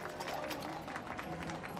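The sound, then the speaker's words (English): Horse hooves clip-clop in a steady, repeated rhythm as an open carriage drawn by four horses rolls along the drive and draws up at the door of an old mansion, over a continuous rumbling background. “At last, the open carriage, drawn by four horses, could be seen in the drive, and as it drew up at the door”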